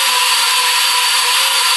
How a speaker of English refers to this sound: Perfect time to, use a blender.